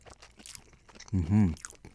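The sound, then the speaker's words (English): Soft crunching from a bite into crispy, moist garlic parmesan chicken, a run of crackly chewing noises, followed by a loud, low, appreciative hum from a voice. “The chicken is moist. The outside is crispy. The garlic parmesan on there is fire.”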